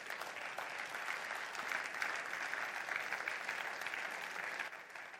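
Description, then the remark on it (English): An audience applauds steadily for about five seconds, a dense, even wash of many hands clapping at a moderate, sustained level with no voices breaking through. “Give God a clap offering, please.”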